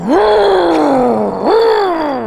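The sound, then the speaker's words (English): A voice imitates a car engine revving, with two rising-then-falling vocal swells, the first long and drawn out, the second starting sharply and then fading, loud and with no other talk. “What did the rev sound like? It sounded like the car was like taking off.”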